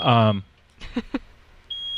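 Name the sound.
electronic beeping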